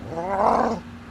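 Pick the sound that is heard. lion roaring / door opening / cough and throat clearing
lion roaring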